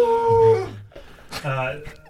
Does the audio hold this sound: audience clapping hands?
no